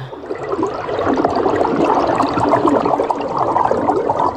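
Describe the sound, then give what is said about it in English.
A rush of churning, bubbling water fills the scene as of diving deep under the sea, holding steady for several seconds with no voices. “So make sure you've got your goggles on properly and let's take a breath and dive.”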